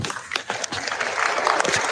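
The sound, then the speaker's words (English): An audience applauds in a played recording after a speaker thanks Wayne LaPierre for his thoughts and prayers, a steady, dense wash of clapping that fills the whole moment, sounding recorded, with a faint murmur of voices mixed in. “They're clapping.”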